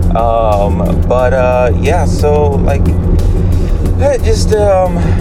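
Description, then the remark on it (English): A loud, steady truck engine, running rougher and louder than it used to, drones in the background with a rough, low rumble, while a person talks continuously over it. “So, I was a little worried because, like, my truck started running a little bit rougher. It's a little bit louder, which I feel like you can kind of hear right now.”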